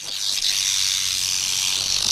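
A rattlesnake shakes its tail, clicking its keratin rattle segments together: a continuous dry, high-pitched buzzing hiss that holds steady and loud for about two seconds, with a faint rapid flutter and no voices.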